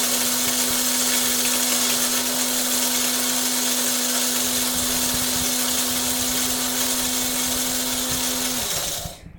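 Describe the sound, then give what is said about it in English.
An oversized espresso machine in a tiny house grinds coffee, whirring loudly and steadily for several seconds with a constant motor hum, then winds down and cuts off abruptly near the end. No one speaks. “You teasing me for the oversized espresso machine in my tiny house?”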